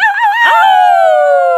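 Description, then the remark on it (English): A woman lets out a loud, drawn-out wolf-like howl, a single sustained cry that holds steady and then slowly sinks in pitch, with no speech around it. “I loved when she did that. I was like, oh, that's a wolfie.”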